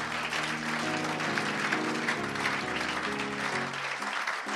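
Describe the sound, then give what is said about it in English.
A large church audience claps steadily and continuously to the Lord, a dense wash of hand claps, with sustained keyboard or organ chords changing underneath. “As you clap your hands, the Lord is opening doors for you.”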